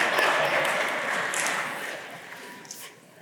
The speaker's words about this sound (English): If you know my wife, she's like, oh my word, people are clapping that I became an American citizen.